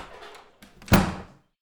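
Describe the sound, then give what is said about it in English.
A door slams shut with a single heavy bang that rings briefly and fades, preceded by softer shuffling and a faint click as it swings closed. “I get inside and slam the door behind me.”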